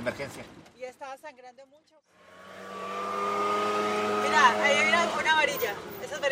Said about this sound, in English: By around 2 p.m., we keep driving around in his truck.